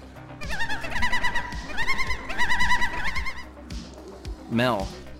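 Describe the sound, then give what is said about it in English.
A bird calls out insistently in a run of wavering, warbling bursts, loud, then pauses before one final rising, harsh squawk, while a small orb floats and spins rapidly, giving off light. “It starts just floating and spinning quickly and rapidly, this emanating light, and the bird now seems to be calling out now, just almost irritated by this light it's giving off.”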